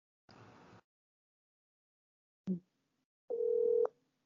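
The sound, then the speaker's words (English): A phone call to the caller's father being placed: a brief burst of noise, a sharp click, then a steady electronic tone lasting about half a second, fairly loud, with no voices. “Let me try my dad again. I'm gonna try my dad again.”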